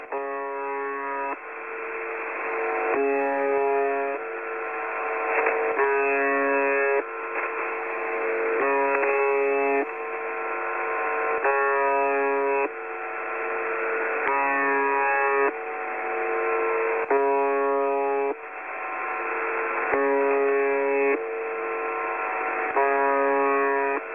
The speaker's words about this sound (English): And if the Soviets or if the Russians feel as though everything is destroyed, then whatever this is, this buzz or this robot, will launch the missiles indiscriminately. That's what I think is creepy about the buzzer.